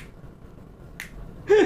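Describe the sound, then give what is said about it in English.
Two sharp finger snaps imitating the clap heard in a film dance scene played without music, a quieter one followed by a louder, brighter one about half a second later, over faint background hiss. “All you hear is, like, the clap.”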